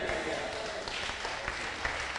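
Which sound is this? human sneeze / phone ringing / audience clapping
audience clapping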